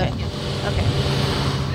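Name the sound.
car driving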